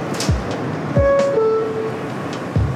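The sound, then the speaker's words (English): A New York City subway train rumbles along the tracks, with low thuds at wheel joints and a steady metallic squeal of wheels rising and sliding through the middle, fairly loud with no voices. “This is a train that's going to go to an above ground station.”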